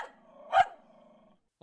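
A dog growls in a drawn-out, rumbling tone, breaks into one sharp bark midway, and starts barking again right at the end. No voices can be heard.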